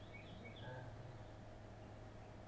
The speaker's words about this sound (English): And it's nice and quiet here, a few chirping birds,